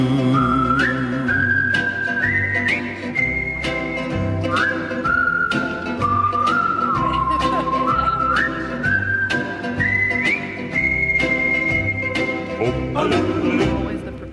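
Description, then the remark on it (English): A bright, clear whistled melody glides in stepwise phrases over a steady band accompaniment with regular drum hits, loud and up front throughout, with no talking. “will whistle the whistling part of that song live on the air.”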